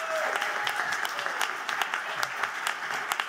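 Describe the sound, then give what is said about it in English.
A crowd at a debate show claps steadily and loudly as a comedian is introduced, a dense wash of applause with sharp individual claps popping out, plus a few faint whoops and cheers mixed in. “you should make some noise for him anyway.”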